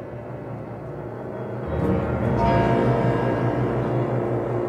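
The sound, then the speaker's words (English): Deep, resonant bells ring out amid sustained orchestral music in an opera recording, the texture swelling noticeably louder about a third of the way in, with no voices. “Bell sounds in this opera. Characters die when bells ring in this opera.”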